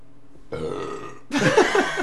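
A single burp in a radio studio, covered with a hand, starting as a muffled rumble and swelling into a louder, croaky, gurgling belch that lasts about a second and a half, with no talking.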